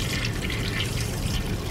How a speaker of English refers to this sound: Why are you flushing after a wee? You don't flush after a wee.